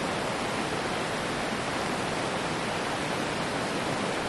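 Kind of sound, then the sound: nature, flowing river water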